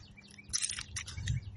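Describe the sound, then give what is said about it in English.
Faint birdsong outdoors, several quick chirps clustered together over a soft low rumble, with no one speaking. “We hear the beautiful birds, which you might even hear in the background.”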